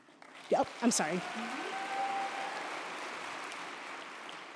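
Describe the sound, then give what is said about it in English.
A crowd breaks into steady applause, a dense wash of clapping that holds at moderate loudness, with a couple of brief vocal whoops rising out of it at the start. The applause is at a ceremony recognizing students for outstanding achievement as their names are called. “I forgot to say, would you please hold your applause till I announce everyone?”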